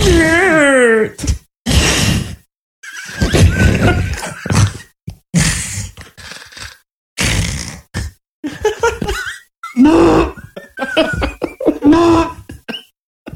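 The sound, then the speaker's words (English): Several voices take turns imitating a deer in rutting season, making loud, drawn-out groaning bellows and grunting calls. There are short pauses between each burst and some rising, wavering pitches. “Everybody do an impersonation of what a deer actually really sounds like.”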